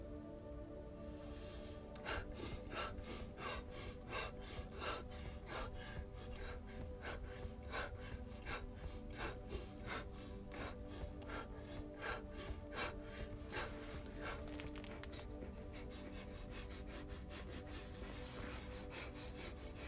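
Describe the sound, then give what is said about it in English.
Rapid, forceful breaths of a fire breathing exercise pumped out in a steady rhythm, each sharp exhale snapping through the nose, loud, continuing without pause for about twenty seconds with no talking. “If you need to awaken the spirit, fire breathing is definitely the way to go.”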